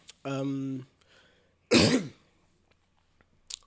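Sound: coughing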